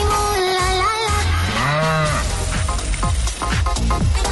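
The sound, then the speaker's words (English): A cow moos loudly, one long, drawn-out low call that swells and then fades, set against a busy background of other noise; a moo sound effect from the Cash Cow game on Cork's 96 FM, where the cow mooing means the caller loses. “Now, you heard the sound of the moo.”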